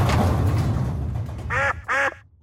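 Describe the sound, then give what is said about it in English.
A duck quacks twice in quick succession, loud, with a third quack cut off at the end, following a stretch of broad rushing noise; in a park. “Wow, you almost ran into the duck.”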